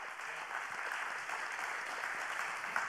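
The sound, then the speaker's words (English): An audience claps steadily to give the Lord a hand clap, a dense wash of many hands striking together at an even, moderately loud level for the whole stretch, with no voices standing out. “Come on, y'all give the Lord a hand clap.”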